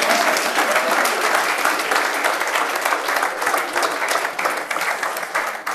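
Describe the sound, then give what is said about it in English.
Sustained applause from a large audience for an artist and his singers, dense and steady for several seconds, loud with a continuous crackle of many hands clapping at once. “Let's clap for our artist and his bag of singers.”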